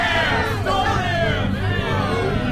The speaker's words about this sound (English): We better go. This crowd is getting restless.